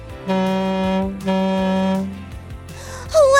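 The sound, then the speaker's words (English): A boat horn toots twice on a river, two loud, steady blasts of nearly a second each with a short gap, followed by a brief wavering sound at the end. “It's a boat tooting its horn on the river.”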